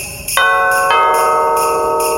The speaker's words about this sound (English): Oh, for fuck's sake. Enough of the sleigh bells already.